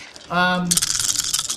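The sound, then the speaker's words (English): A brief low voiced tone gives way to a bright, busy clatter of dice rolled during a tabletop game, scattering with many small rapid clicks rattling together for about a second, used as Foley for scattering skeleton bones. “So I wrote a game where you battle the undead skeleton army, and whenever I run it, I absolutely Foley my dice into being scattering bones.”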